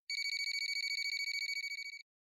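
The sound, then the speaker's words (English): A cell phone rings in a rapid, trilling burst of bright electronic pulses, steady and clear for about two seconds before cutting off, with no voices present. “And after a few moments, the phone rang.”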